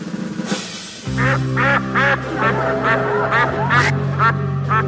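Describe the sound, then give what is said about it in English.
A man imitates a duck with a rapid series of loud nasal quacks over a steady low droning tone that continues throughout. “I believe this man is a duck.”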